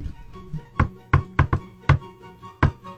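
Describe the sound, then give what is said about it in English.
A series of about seven sharp knocks on a hard surface in an uneven, tune-like rhythm: a few quick raps, a pause, then two final knocks. No voices are heard. “So you, along with TikTok, are now understanding that this knock, the...”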